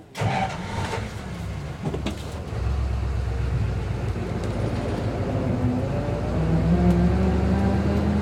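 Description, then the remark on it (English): A one-of-a-kind vintage streamlined car built by Fuller starts up after a few clunks, then settles into a steady low rumble as it drives passengers around a campus, growing slightly louder toward the end with no talking. “And the one-of-a-kind car didn't just sit there.”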